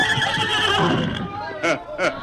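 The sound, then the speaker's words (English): Silver the horse neighs in a long, wavering whinny, followed by two short, shrill bursts of neighing near the end, loud and clear. “Silver think time to ride way. Him not understand. Maybe soon, Silver.”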